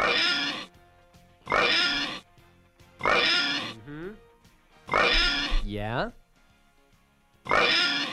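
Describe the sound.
A person imitates a pig in an oinking contest, letting out five loud, raspy snorting oinks at steady intervals, with a couple of short rising squeals and brief murmured replies in between.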